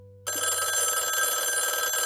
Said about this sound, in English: The house finally went quiet sometime around midnight, but it didn't stay peaceful for long. Around 12:30 in the morning, the phone rang.